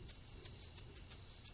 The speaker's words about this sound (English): Not all music will be produced by humans. Right now we've got some crickets accompanied by humans.